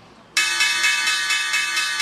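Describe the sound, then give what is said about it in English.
A stock exchange opening bell, the final opening bell of the first quarter on a Tuesday morning, starts abruptly and rings on loudly and continuously, a bright, rapidly trilling electric clang with no voices over it. “There's the opening bell, guys.”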